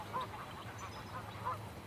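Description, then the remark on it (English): A few scattered goose honks over a steady low rumble of wind on an estuary, spaced roughly half a second apart across an open, otherwise quiet stretch of water. “They look so insignificant amongst the geese.”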